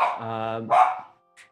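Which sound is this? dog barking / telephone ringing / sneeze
dog barking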